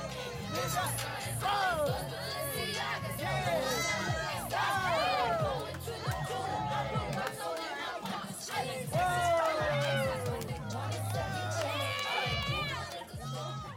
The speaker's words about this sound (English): Listen to these protesters dance and sing along to Cardi B.